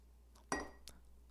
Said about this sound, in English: I accidentally, sounded like I cheersed. I have my tea here, and I clinked the tea against the counter. So let's consider that a cheers. I didn't even try to. Sometimes you just cheers the kitchen counter with your mug